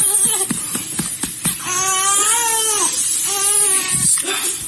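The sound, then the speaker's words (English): A female person crying: a few short catching sobs, then two long, wavering, high-pitched wails, loud over a steady hiss. “Oh, she's crying now.”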